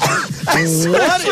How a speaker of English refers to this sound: Because then the hacking came after. Right, but at least the big cough sounded like I was choking.